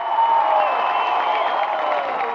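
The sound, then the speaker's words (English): A large crowd at a US presidential campaign rally cheers and applauds steadily as Senator Al Gore is introduced, a dense, sustained roar of voices and clapping with no pauses throughout. “What a crowd here! What a crowd!”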